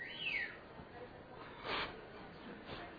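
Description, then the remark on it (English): A bird calls once with a quick, high descending chirp at the start, fairly faint, followed by soft muffled rustling. “The bird?”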